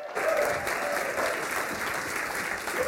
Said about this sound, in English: So stand up and let's cheer loudly for this guy, all right? He's awesome. Yeah.